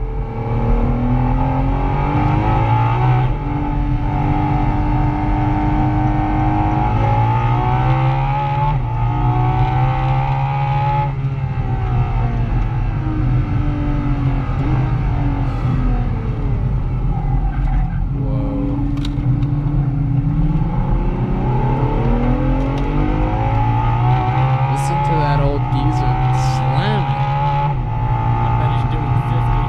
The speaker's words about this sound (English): Speaking of the LaFerrari, I just found a little soundbite of it.